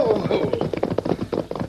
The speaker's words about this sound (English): Dan and Shorty Smith rode hard as they followed the Lone Ranger. And a few moments later, they reined up their horses beside a campfire where the masked man and Tonto were resting.